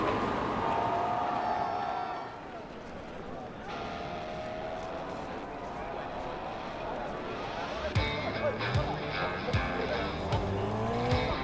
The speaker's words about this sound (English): It's funny, when 40 other cars are chasing you, 180 miles an hour doesn't feel fast at all. The gas pedal is flat to the floor. NASCAR drivers barely touch the brakes.